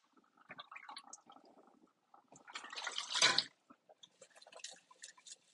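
Dishes being washed clink and clatter softly, broken by a brief gush of running tap water for about a second, then more light scraping and clinking. No one speaks.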